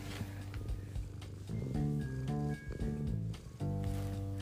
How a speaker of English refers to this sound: Listen to my cat purr.